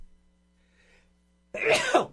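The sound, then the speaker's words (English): A single loud sneeze bursts out suddenly after a near-silent pause, a sharp explosive blast of breath that trails off within about half a second. “Excuse me, I just sneezed.”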